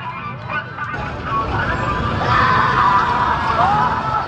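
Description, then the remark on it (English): A dense street crowd in Kabul, Afghanistan roars and cheers in celebration of Afghanistan qualifying for the Cricket World Cup, with scattered shouts and high screams rising over a constant wash of noise that swells louder midway and stays sustained. “Crowds took to the streets in Kabul to celebrate when Afghanistan qualified for the World Cup a year and a half ago.”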